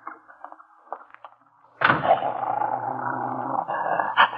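Dogs growl at each other, a big police dog and another dog, starting with faint rumbles and then breaking into a loud, sustained snarling that runs without pause for the last few seconds.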